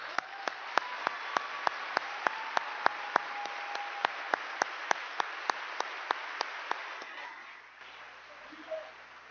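An audience at a drug court program event gives a round of applause for a speaker's case manager: a dense wash of many hands clapping, with a few sharp, evenly spaced claps standing out on top before it fades away near the end.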